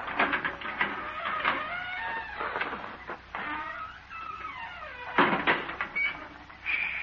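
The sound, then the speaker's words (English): A gate creaks open slowly, its hinges letting out a long, wavering squeal that rises and falls in pitch for several seconds, with no one talking. “Here's the gate.”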